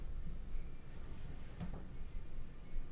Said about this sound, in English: Somebody's knocking on the door.